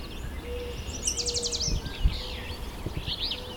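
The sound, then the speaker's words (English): A rose-breasted grosbeak gives sharp, squeaky call notes amid other chirping birds, with a quick trilled burst early on and a low outdoor rumble underneath. “So there's a rose-breasted grosbeak squeaking.”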